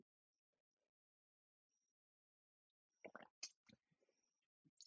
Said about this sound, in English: time for another sip.